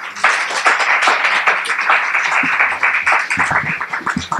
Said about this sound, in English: Let's give him a warm round of applause.